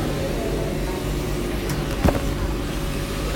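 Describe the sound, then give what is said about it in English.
A steady mechanical rumble with a low electrical hum as someone boards a train at a busy station, broken by one brief swooshing thump partway through. No one speaks. “I'm just gonna take you on the train so you can hear, but I'm gonna pause right after.”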